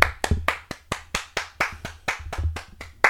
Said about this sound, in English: Here, hold this. There we go. And we'll clap it up. Clap it up, everyone. Clap it up.